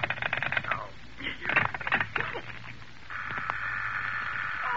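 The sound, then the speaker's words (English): A telephone rings in short, rapid rattling bursts, with clattering sounds in between, then gives way to a steady, high-pitched electronic tone that holds to the end. “Hello, stop ringing me, do you hear?”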